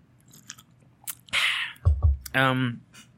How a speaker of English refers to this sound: So, hold on, let me take a sip of my drink.